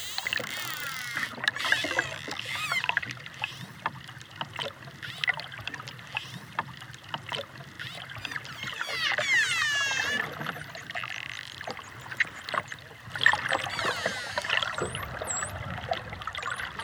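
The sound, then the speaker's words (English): A noisy pod of dolphins diving and calling to each other, recorded underwater in July 2012 with a hydrophone from a boat in the Caribbean Sea off Punta Allen, Yucatan, Mexico: rising and falling whistles overlapping with bursts of rapid clicks, moderately loud and busy, over a steady wash of water and low boat rumble. “This is a noisy pod of dolphins, diving and calling to each other off the coast of Punta Allen in Mexico's Yucatan.”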